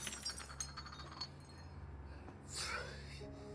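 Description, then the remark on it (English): Several quick, bright glass clinks ring out in the first second over a low rumble, followed by a louder rushing burst with a faint high glassy tinkle, as Spider-Man is hit with a glass in a movie scene. “With a glass and then hit him back?”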